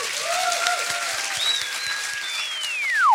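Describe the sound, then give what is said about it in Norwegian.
An audience applauds an author at a book event, steadily for about three seconds, a dense wash of clapping that swells slightly at the end, with thin whistling tones gliding over it and a falling sweep closing it out. “Og gi ham en stor applaus”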